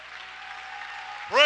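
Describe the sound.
An audience in a church in Baton Rouge claps hands in a steady, dense wash of applause, fairly loud and continuous, before a voice cuts in near the end.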